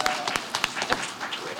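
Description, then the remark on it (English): An audience applauds Dana Steingold, who originated the role of Girl Scout in Beetlejuice: a dense patter of many hands clapping at once with sharper individual claps standing out. It holds fairly steady and moderately loud for a second or two, with a little crowd noise. “So, round of applause for frickin' Dana Steingold.”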